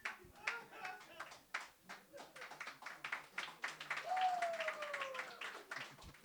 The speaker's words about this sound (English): I don't know why I didn't stomp on that applause.